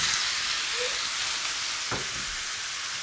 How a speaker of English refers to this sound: Just a warning, it's going to get noisy. Lots of sizzle because I'm cooking the meat.